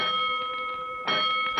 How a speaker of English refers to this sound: He's all ready to report to Three Ones at 4 o'clock sharp for duty with the second platoon when suddenly the call bell at headquarters begins to ring. Hold it, Collins. That's the third alarm.